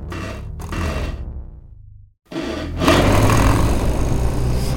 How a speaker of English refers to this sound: Now, buckle up while I ignite my electric rocket bike, which is quite different from a regular bike, what with the rocket and all.